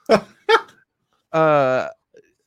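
A pet dog barks twice in quick succession, loud, then lets out a longer drawn-out whine that slides down in pitch before fading, followed by a faint short sound.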